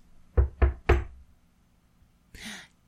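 Three quick, solid knocks in an even rhythm, fairly loud, followed after a pause by a brief soft scraping rustle; no one speaks.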